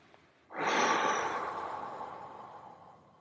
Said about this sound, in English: We're breathing slowly into the bottom of our lungs, then the middle and the top, and letting go. So keep going here.